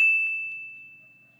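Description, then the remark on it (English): A single microwave timer ding, set for 2 seconds with an entire turkey inside, strikes once, a bright high-pitched bell tone that rings on and slowly fades over about a second and a half, with nothing else sounding. “In fact, here, I'm going to put in an entire turkey, and I am going to set the timer for 2 seconds.”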